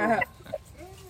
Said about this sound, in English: The dogs agree. Sorry. I'm barking in agreement, too.